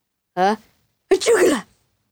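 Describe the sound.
A child's voice imitates a sneeze as his sound for forging a key in the game KeyForge: a short, rising voiced "ah" intake, a brief pause, then a louder, breathy, noisy "choo" burst, all on its own without other talk.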